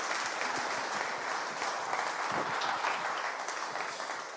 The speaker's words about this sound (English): Let's give these guys a round of applause, can we? Thanks.